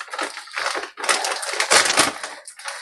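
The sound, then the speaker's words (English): A plastic M&Ms candy bag crinkles and crackles steadily as it is handled and opened with scissors, with dense, papery rustling bursts that swell and fade over a few seconds, no voices present. “And then I'll put the unused M&Ms into a Ziploc.”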